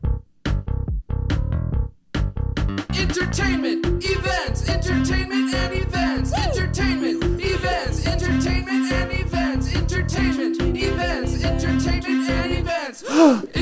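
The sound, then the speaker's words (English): A short, bouncy segment jingle with punchy beats and sung melodic lines plays loud, with a sharp gasp breaking into the song; no one speaks over it. “That song is so funny. The best part is the gasp.”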